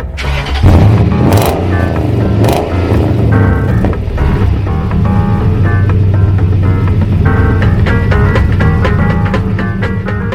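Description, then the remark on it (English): A truck engine cranks and catches, then settles into a loud, steady rumble as the vehicle drives, with no one talking. “I normally just put you in the truck and, well, and just drive you around while you talk.”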